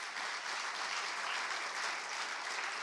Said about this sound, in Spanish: Dame un aplauso al Señor por esta palabra.